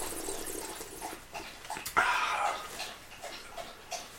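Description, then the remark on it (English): A dog, Tessie, lapping water: soft, quick wet slurps repeat irregularly at low volume, with one louder, brighter splash of sound partway through. No one speaks. “So, yes, the lapping sound is the dog”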